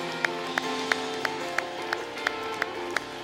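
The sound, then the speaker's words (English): A church audience claps hands to Jesus in a steady, even rhythm, about three sharp claps per second, over a sustained droning musical tone and a soft wash of crowd noise. “Clap your hands one more time to Jesus.”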